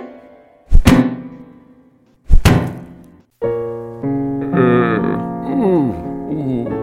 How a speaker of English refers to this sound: Then, Chopachi picked up a rock and knocked Space Monkey out cold.